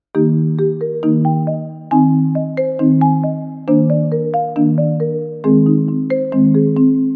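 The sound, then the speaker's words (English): A bright marimba plays a bouncy melody, each struck note ringing briefly over repeating low bass chords in a steady rhythm, loud and alone with no voices. “Question two is as follows on the marimba.”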